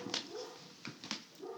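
A dog whimpers and lets out a few short, yippy barks in quick bursts, fairly quiet, with no one talking.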